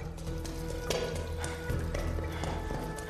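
Several loud, hard footsteps strike a solid floor in a cavernous corridor at an uneven pace, each one ringing out with an echo over a low, steady droning hum.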